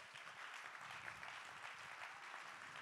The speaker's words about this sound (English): Clap your hands to give God the praise.